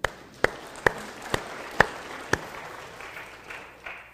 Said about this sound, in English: How many of you enjoyed it? Clap your hand.